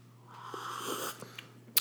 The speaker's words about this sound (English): I'm not drinking beer this morning. I've changed pace. I might just slurp some coffee.